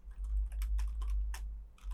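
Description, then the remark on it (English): Keyboard keys tapping in a quick, irregular run of light clicks over a steady low hum; no voices. “I hear keys tapping.”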